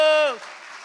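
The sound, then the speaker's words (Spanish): A speaking voice ends on a drawn-out, falling syllable, then an audience breaks into a short burst of steady clapping that continues at a moderate level. “¡A ver ese aplauso!”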